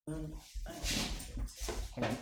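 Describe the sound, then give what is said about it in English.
A dog that has got hold of a phone whimpers in a few short, high, whining bursts, with snuffly noises between them and a voice faintly in the background. “Dog's got my phone.”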